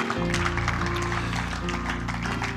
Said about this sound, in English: And we're thankful for the Word tonight. In Jesus' name. Give him a hand clap of praise in this house tonight.